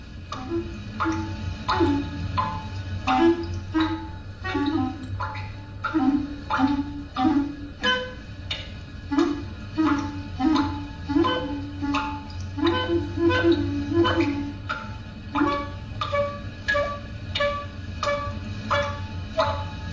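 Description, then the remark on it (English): Steady drips of water falling into a kitchen sink tap out a regular rhythm, while a jazz clarinetist improvises short, wavering phrases against the beat. No one speaks. “… playing against the rhythm of dripping water in the kitchen sink.”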